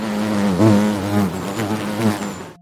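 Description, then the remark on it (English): A bee buzzes steadily for a couple of seconds, its droning hum wavering slightly in pitch, with no talking over it. “Bees, they buzz.”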